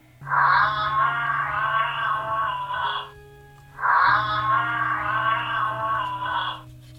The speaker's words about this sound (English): And that is a giraffe.